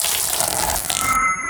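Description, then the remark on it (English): A big bowl of water dumped from high overhead straight onto the ground, a loud rush of water pouring out all at once, gushing and splashing for a moment before trailing off, with no voices. “go to that big old bowl of water and just dump it high over his head and straight on the ground and make a big splash.”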